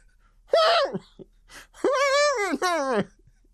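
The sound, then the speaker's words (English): A voiced, muffled gasp from a man, his eyes widening, breaks the quiet, then trails into two drawn-out, wavering breathy cries, like someone acting out shocked gasping. No words are spoken. “This comment causes …'s eyes to widen as he lets out a muffled gasp.”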